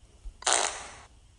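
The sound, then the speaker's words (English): A single wet, juicy fart lasting over half a second, a loud, noisy, sputtering burst that fades toward the end, with no talking. “Ooh, it sounds like a wet, juicy one.”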